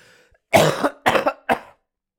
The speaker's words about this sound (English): Thank God this coughing fit's done.